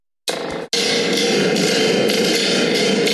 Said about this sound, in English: Yeah, sounds just like lightning. It's a sound effect. Well, it's a sound effects device. Thunder, maybe. Sounds like thunder.